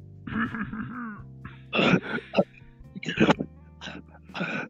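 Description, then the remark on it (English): Several harsh, throaty coughs and throat-clearing rasps in short bursts, fairly loud, with a low steady hum underneath and brief voiced sounds between them. “Shut up, … over there.”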